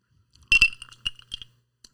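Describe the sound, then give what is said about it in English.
Glasses clinking together in a toast: a quick double clink with a bright ringing tone, then a couple more lighter chinks and a faint final tap. No voices. “Well, clink, clink, clink. Let's give it a shot.”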